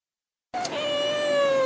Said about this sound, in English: And that was Hot Toddy getting interviewed by Miss Pingrino's cat, Teebs.